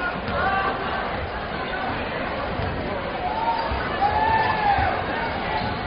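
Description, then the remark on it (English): Steady noise from a big crowd at a night basketball game between Owasso and Corona, a dense wash of chatter and murmuring voices filling the whole stretch, with a few higher calls rising above the din. “Big crowd here tonight for this one.”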